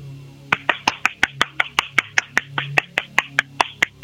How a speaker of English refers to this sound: That's too much clapping, unless you save up all your clapping for live events, concerts, musical events, and such.